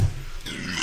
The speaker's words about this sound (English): Burp for the stupid socialist convention.